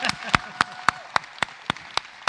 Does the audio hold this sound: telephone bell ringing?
no